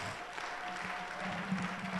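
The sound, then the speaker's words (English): An audience claps hands together for the Lord, a dense, steady wash of many overlapping claps with no clear beat, sustained at an even loudness throughout. “Oh, I think it's a good place to clap for the Lord.”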